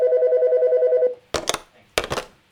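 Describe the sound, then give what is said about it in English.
A steady, pulsing telephone tone plays for about a second and stops, then two sharp clattering clunks follow as a customer's call is hung up. No one speaks. “Why are you hanging up on them?”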